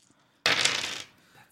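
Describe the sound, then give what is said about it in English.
A sudden clatter of five eight-sided dice rolled for damage in a tabletop game, tumbling across a hard table, a bright rattling burst lasting about half a second before it quickly settles into quiet. “The max I can do on this is 5d8 because I get a +1 for an undead evil creature.”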